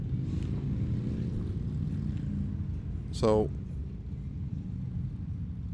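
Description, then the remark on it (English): A dense, steady rumble of about 14 Harley-Davidson motorcycle engines idles and revs about 100 yards away in Whitman, Massachusetts, throughout, with a short spoken word and a brief higher tone cutting through midway. “There's like 14 motorcycles like 100 yards away from me, all Harleys.”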